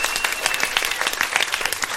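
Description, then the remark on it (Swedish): A talk show audience claps steadily, a dense patter of many hands with bright, crackling texture and small swells in loudness, no voices standing out. “Ja, det är värda en applåd faktiskt.”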